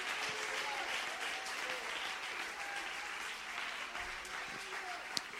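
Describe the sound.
A church audience stands and claps hands in praise of the Lord, a dense, steady wash of overlapping claps lasting several seconds, with faint voices calling out underneath and one sharp, louder clap near the end.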